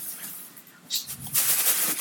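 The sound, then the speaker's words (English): A meditation cushion is handled: a quick soft rustle of fabric, then a longer stretch of brushing, patting and shuffling, moderately loud with no one talking. “You know they have meditation cushions? Here, let me show you.”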